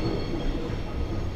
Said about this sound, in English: What, just a train's... That train's fucking loud.